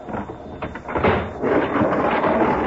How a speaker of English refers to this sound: As they break the seal on the freight car, other men tear open the door of the car ahead. The men work quickly, professionally.